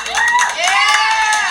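Loud, close cheering from a few excited voices, with rising and falling whoops over steady clapping, continuing without a break for the whole moment.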